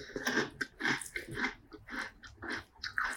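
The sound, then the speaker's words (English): Steady crunching of dry Fruit Loops breakfast cereal being chewed, with repeated crisp bursts roughly every half second and no talking. “Super crunchy, super sweet.”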